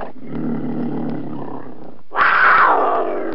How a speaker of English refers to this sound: There's a mountain lion! Everybody freeze.